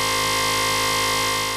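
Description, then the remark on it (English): A game show buzzer sounds during a rhyming word quiz, one long, loud, steady buzz, harsh and rich in overtones, holding unchanged for over a second before fading slightly at the end. No one speaks. “There's the buzzer.”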